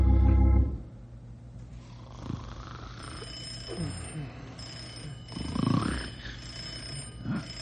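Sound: telephone bell ringing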